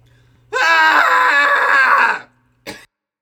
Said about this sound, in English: let's do a scream together. We'll keep this one short today. It's a Friday. Let's get on with that weekend, everybody. And so, yeah, scream along with us. Find a place that's safe to do so. Here we go. In 3, 2, 1.